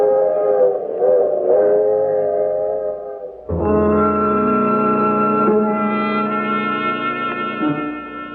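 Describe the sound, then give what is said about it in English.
A train whistle sounds in long, sustained blasts as the train continues on from Sooner Falls to New York, first a wavering tone, then a loud, full chord held for several seconds before fading, with no voices present. “In Sooner Falls, I watch the train continue on to New York.”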